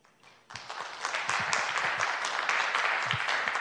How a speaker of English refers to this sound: Everyone, thank you so much for your applause. Please hold your applause until the very end so we can get through tonight.